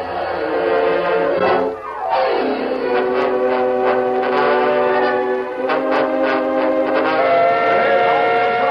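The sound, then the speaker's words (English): A loud, sustained whistle from a departing passenger train blares with rich harmonic tones, its pitch sliding down and settling, over the steady rumble of the train in motion; a few short bursts punctuate the long blast. “There's a whistle, folks! Yes, hop aboard! First passenger train to go all the way to Dry Creek.”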